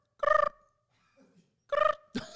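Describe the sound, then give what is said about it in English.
Two short, buzzy trilled chirps separated by a pause, imitating a cricket, apparently done by voice, with a brief rougher burst right after the second chirp. “That's an amazing cricket sound”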